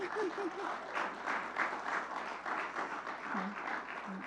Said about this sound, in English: I just feel like we should clap for them again.